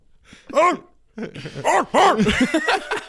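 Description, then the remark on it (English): A person's voice imitates a loose dog barking: one yelping bark, a short pause, then a quick run of several more fairly loud barks with a whiny, arching pitch. “And he goes, it was a dog. Yeah, it was just a it was a loose dog.”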